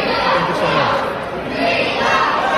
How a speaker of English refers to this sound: Chants broke out at the CPAC convention today following a speech from Republican presidential candidate Nikki Haley.